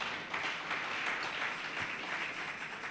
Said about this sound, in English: Clap for Jesus now.